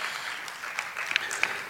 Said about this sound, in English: Yeah. Come on, somebody's got to clap to that.